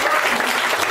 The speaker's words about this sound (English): The slow clap for literacy. Slowly building clap for literacy.